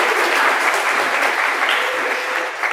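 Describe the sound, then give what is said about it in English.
A crowd at a university's first EU public meeting of the year applauds first-time attendees steadily, a dense, even wash of clapping that holds at a fairly loud level throughout, with no voices standing out above it. “Yeah, give them a round of applause.”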